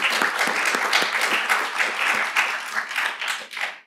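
A crowd applauds steadily, dense overlapping hand claps forming a bright, continuous patter that holds for a few seconds and then tapers off at the end.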